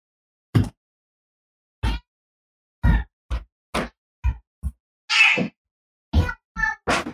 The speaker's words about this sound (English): Did you hear that cat squall as that kid threw him out the door?